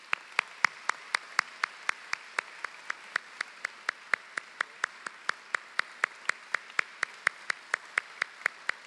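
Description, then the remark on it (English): Steady, evenly paced hand clapping for an honoree at a college awards ceremony, about three or four sharp claps per second, continuing for around nine seconds with no voices over it. “Let us give him a round of applause.”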